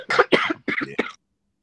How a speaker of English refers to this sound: Man, I've been sick 5 days. Hold on. What are you sick with? It's just a stomach bug? The vid? What are we talking about? Yeah. Just coughing nonstop.